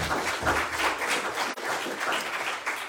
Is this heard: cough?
no